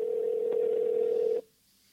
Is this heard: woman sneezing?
no